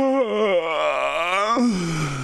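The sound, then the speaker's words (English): A single voice lets out a long, loud, exaggerated yawn, its pitch sagging and then climbing, before breaking into a shorter, breathy tail. “What? Everybody yawned.”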